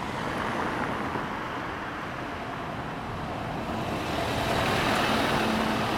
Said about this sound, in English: So it's not to get hit by this bus, that's coming my way. Is it a bus? No, it's not. It's a big refrigerated truck. Which is probably actually warmer than I am.